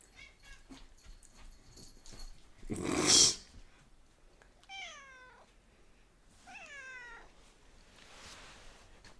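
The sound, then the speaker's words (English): A cat retches and vomits with one loud, harsh heaving burst, followed by two drawn-out, wavering cries, with no talking. “Oh no, he's gonna vomit. There he goes.”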